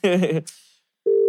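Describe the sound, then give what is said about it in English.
A brief burst of speech gives way to a moment of hiss, then a steady, loud electronic ringing tone from an outgoing WhatsApp call starts abruptly and holds to the end. “Ringing. Oh. It's going through. Because I'm calling on WhatsApp.”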